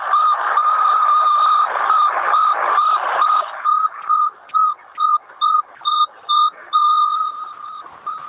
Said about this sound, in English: the Sputnik satellite made a beeping sound as it orbited the Earth, and that was broadcast on all the news networks and everything. I have that beeping sound right in this book.